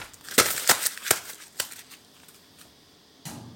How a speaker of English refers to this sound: The scrunching the paper is also a bit overdramatic.